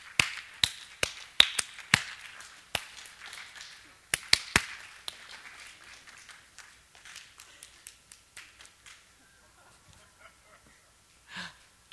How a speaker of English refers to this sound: I want you to clap with me. Okay. Now I want you to clap with me again.